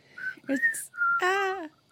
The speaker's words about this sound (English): Oh, you're kind of whistling.